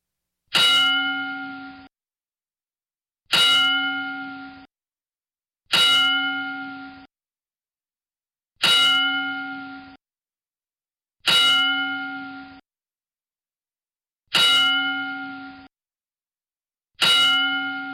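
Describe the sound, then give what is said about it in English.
A metallic wrestling ring bell is struck seven times at a slow, steady pace as a ten-bell salute honoring three people, each clang sharp and loud, ringing briefly before fading into silence. No voices are heard. “And I think now is a good time to give them, I mean, all three of them, together, the 10 bell salute.”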